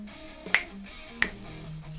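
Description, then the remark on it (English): Three crisp finger snaps ring out at a steady, unhurried pace over soft music with sustained low notes, each snap a sharp, bright click standing well above the backing. “I always thought this could have done with some finger snaps.”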